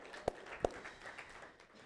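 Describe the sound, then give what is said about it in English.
Church audience applause during a service, giving God a round of applause, faint and scattered: two sharp, distinct claps stand out early, followed by a soft, diffuse wash of clapping that stays at an even, low level. “Let's give God a round of applause on that.”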